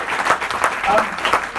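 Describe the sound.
An audience breaks into a round of applause for the authors at a book event, a dense, steady patter of many hands clapping at moderate loudness for a moment, with a few voices mixed in underneath.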